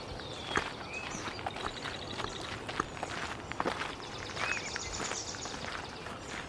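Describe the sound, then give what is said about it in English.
Steady footsteps crunch along a marsh path at an even walking pace, with several birds singing and chirping over them throughout. “Let's head down this path through the marsh here.”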